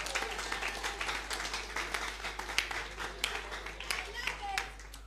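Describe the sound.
An audience claps for Jesus Christ for about five seconds, a dense, fairly loud patter of many hands with scattered sharper claps, some voices mixed in, and a low electrical hum underneath.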